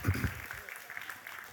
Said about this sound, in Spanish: Un aplauso fuerte.